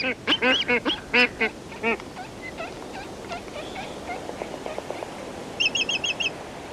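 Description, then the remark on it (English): Black-footed albatrosses call in loud, braying bursts, then fainter honking notes trail off, ending with a quick series of high, squeaky chirps. “the black-footed albatross collects squid and masses of flying fish eggs with its long, hook-tipped bill”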